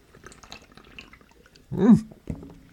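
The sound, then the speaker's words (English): A big gulp of beer, a wet swallowing burst with a rising pitched sweep, followed by a shorter second swallow, after some faint low murmuring. “But the struggle's still real in trying to sneak these sips in.”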